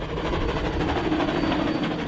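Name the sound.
steam train on railway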